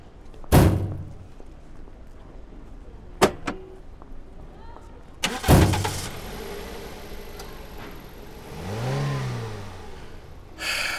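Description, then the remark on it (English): Car doors thump shut a few times, then an engine turns over and revs, its pitch rising and falling as the car pulls away, following an ambulance, and fades out. “Craig swiftly came back out of the parlor and helped his father to the car. Within minutes, they followed in the direction of the ambulance, leaving Harry and Jay alone.”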